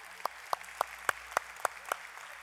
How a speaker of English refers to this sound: This is only the second time that anyone has ever clapped for me for not drinking Coke.